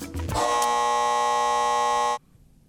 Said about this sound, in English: Can't say. Couldn't beat the buzzer. Can't beat the buzzer.